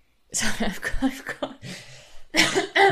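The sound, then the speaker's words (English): A series of harsh, phlegmy coughs comes in close bursts, with a throaty clearing in between and a final loud pair of coughs at the end. “I've been needing to cough for ages and I feel like I had this horrible like phlegmy, very Kim actually, this kind of like yeah, phlegmy growl at the back of my throat.”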